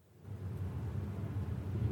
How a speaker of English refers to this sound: On a ship at sea. A tempestuous noise of thunder and lightning heard.